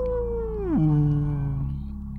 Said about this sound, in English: Yeah. Got some whales in there.